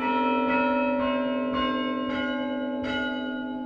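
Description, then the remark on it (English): Church tower chime bells at St. Mark's, played by a chime player using wooden handles connected by cables to the bells, ring out a steady sequence of struck notes, about two per second, each blending into a rich, lingering metallic hum. Loud, with no voices. “St. Mark's only plays the chime on special occasions because their chime player is also their organist, and he's busy with that most of the time.”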